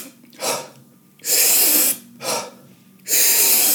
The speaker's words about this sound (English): if you Google or link up Wim Hof, and what it is, it's taking like 30 really, really deep breaths, and then you let the breath out, so it's like...